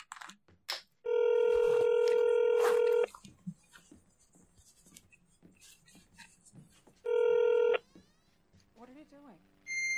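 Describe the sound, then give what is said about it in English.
Telephone dialing tones as someone calls Taco Bell: two loud, steady electronic beeps, one about two seconds long and a shorter one later, with faint voices and clatter in between. “I'm making a call.”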